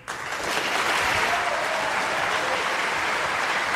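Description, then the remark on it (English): An audience at Roberta's Pizzeria in Bushwick, Brooklyn, breaks into dense, steady applause for a live radio broadcast that swells quickly to full volume, holds for a few seconds of continuous clapping, then stops abruptly. “Well, that was a fast cutoff in the clap there.”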